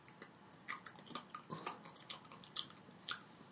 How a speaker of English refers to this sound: He didn't know that somebody could put away so many goose eggs. They're pretty big. He's just got his mouth open. And a big smile. Please shut your mouth when you chew.